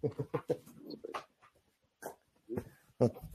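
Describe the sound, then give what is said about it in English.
A dog wanders about at night, snuffling in short, snorting bursts with a few faint whimpers, then goes quiet for a moment before several more loud sniffs. “My dog is wandering and like, hey, dude, are we supposed to go somewhere at this time of night?”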